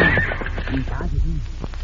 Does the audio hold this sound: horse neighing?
yes